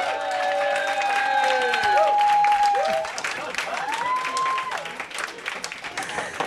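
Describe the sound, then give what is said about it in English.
Steady applause from a live audience fills the space, dense clapping with scattered whoops and cheers rising over it, sustained for several seconds at a lively, full volume. “Well, look, round of applause for all of those dilemmas.”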